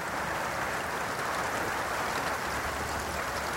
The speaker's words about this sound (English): I love the pitter-patter of raindrops on a roof.